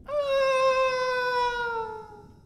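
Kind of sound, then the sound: human body sound, screaming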